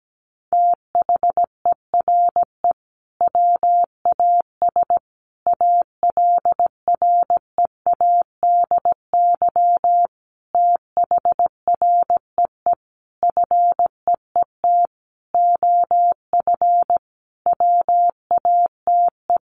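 A single steady mid-pitched beep keyed on and off in rapid dots and dashes, grouped into words with short pauses between, sent as Morse code at 17 words per minute, spelling sentences built from the top 700 words, with no voices.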